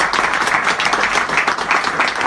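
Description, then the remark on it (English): A crowd breaks into sustained applause, many hands clapping in a dense, steady wash of crackling sound that stays loud and even throughout. “I think that deserves a huge round of applause, doesn't it?”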